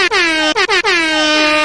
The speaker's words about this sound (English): Hit him with the air horns.